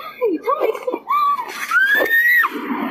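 A woman screams in distress after being pepper-sprayed during an arrest, a string of loud, high-pitched wails and shrieks rising and breaking over a few seconds, with no intelligible words.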